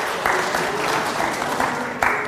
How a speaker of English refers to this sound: I think everybody needs a round of applause